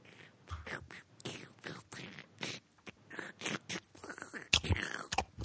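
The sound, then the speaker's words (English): Wet chewing of a mouthful of burger: a quiet run of irregular smacking and squelching mouth sounds over several seconds, with no one talking. “Oh, there's nothing like the sound of chewing noises.”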